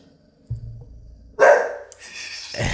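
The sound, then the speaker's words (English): A dog barks loudly, one sharp bark after a low rumble, followed by a trailing second bark-like sound. No one speaks. “the dog's here.”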